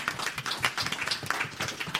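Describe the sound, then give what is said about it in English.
An audience breaks into sustained applause for the show's team, many hands clapping in a dense, crackling wash that stays fairly steady and loud throughout, with no voices standing out. “So round of applause for them, please.”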